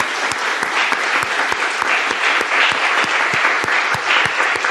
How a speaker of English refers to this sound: Another round of applause, please, for our panelists.